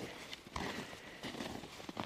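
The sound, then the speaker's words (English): Footsteps crunch across icy snow, not cold enough to squeak, in a slow, steady rhythm, three or four gritty steps with brief scraping between them, heard alone without any voices. “And there's icy snow”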